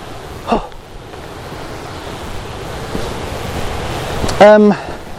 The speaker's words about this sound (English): Hey, that's the waterfall. This is the waterfall.